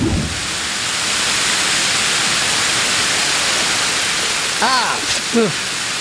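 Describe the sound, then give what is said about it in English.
Steady, dense hiss of white noise fills the whole clip at an even level, with a couple of brief voiced murmurs poking through near the end. “It's kind of wet in here and chilly, but the white noise is kind of soothing.”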